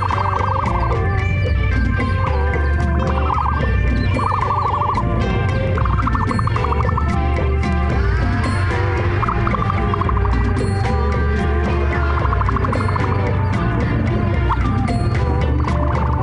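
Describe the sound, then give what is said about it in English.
Baby ostrich chicks call to other chicks with repeated short, trilling chirps at a mid pitch, several overlapping, over a steady, dense background of other bird noise that stays loud throughout. “The baby ostrich makes this sound to call to other chicks.”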